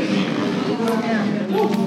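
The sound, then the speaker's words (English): An audience boos together, a loud, sustained low drone of many voices that holds steady for about two seconds without a break. “No, don't boo. Don't boo.”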